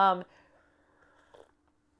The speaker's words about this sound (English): So people are going to love that sipping on the... on the tea, and right in the microphone. My mug says, I wish I could text my cat.